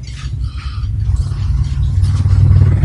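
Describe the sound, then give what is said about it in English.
A deep, throbbing rumble of helicopters flying overhead, with a low pulsing drone and faint mechanical rattle that steadily grows louder over the three seconds, with no voices. “That sounds like helicopters.”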